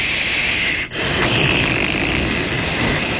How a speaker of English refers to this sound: And the hot water is coming pouring down in there, and I get the soap, you know. And I stick my hands into the water.